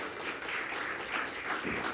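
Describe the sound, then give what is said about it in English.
A crowd applauds steadily for a ninth anniversary, a dense wash of many hands clapping at once with no clear individual beats, holding a fairly even loudness throughout. “A round of applause.”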